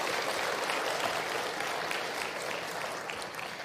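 A crowd applauds steadily, a dense wash of many hands clapping at once that holds its level throughout and tapers only slightly at the end, with no voices standing out.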